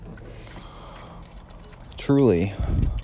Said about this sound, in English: there we go, there's my keys.